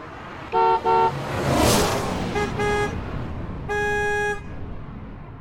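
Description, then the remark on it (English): Several car horns honk in short bursts, used to herd a herd of animals in a chosen direction: two quick toots, a whooshing passing vehicle, two more beeps, then a longer sustained blast over steady road noise. “they use car horns and Jack's pet cutter Hermes to herd the Macs in the direction they want them to go”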